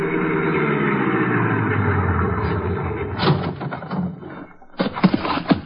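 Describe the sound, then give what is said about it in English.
A car engine idles with a steady low rumble for a few seconds, then drops away as scattered knocks and brief indistinct sounds follow. “You mind if I wait in the car?”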